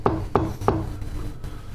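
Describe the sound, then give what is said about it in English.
Three firm, evenly spaced knocks on a wooden door, each a hollow thud with a brief resonant ring, followed by low background rumble and no voices. “Bitch, open the door.”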